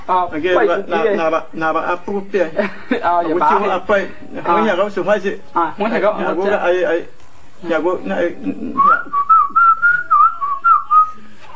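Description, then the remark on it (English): Several seconds of talking give way to a clear whistle from a man that wavers up and down in pitch like spoken phrases, a short run of whistled speech directed at another man. “So the other guy's whistling to him, saying, "Whistle, show them whistle speech."”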